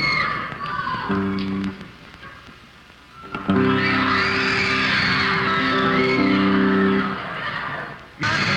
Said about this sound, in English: You'll hear the clapping, and also listen to how loud the audience gets. It goes something like this.